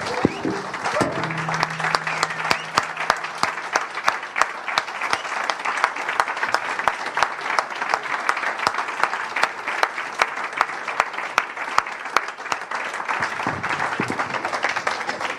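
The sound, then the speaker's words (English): Sustained audience applause for a group of people asked to stand up, a dense wash of many hands clapping steadily at a loud, even level for about fifteen seconds, with a faint low hum at the start. “Let's give them a round of applause, yeah.”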